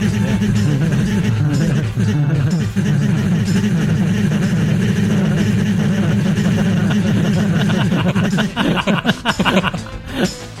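A loud, steady, low rumbling drone like a helicopter engine, apparently made by a voice, runs for about eight seconds, then breaks into choppy bursts mixed with chuckling laughter.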